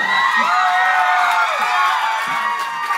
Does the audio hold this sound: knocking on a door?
no